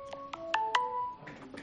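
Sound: phone ringtone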